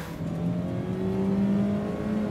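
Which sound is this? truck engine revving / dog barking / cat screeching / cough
truck engine revving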